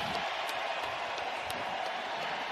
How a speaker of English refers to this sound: He has been getting a standing ovation here. Walking. Yeah, this is nice from this 49er crowd.